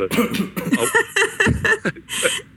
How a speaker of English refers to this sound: No, it was a real cough. No, really it was.